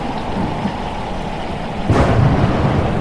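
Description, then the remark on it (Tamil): Heavy rain pours steadily in a dense hiss, then a loud thunderclap bursts in near the end and rumbles on over the downpour. No voices. “போர்ச்சுகல்ல இருந்து ஆப்பிரிக்காவை சுத்தி வர்றதுக்குள்ள பயங்கர மழை, இடி, புயல், இதெல்லாம் பொருட்படுத்தாம இந்தியாவை அடையணும்னு ஒரே கொள்கையில இந்த 4 கப்பலும் வந்துட்டு இருக்கு.”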